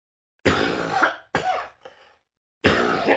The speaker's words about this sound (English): Sorry, I'm having a White House cough attack here.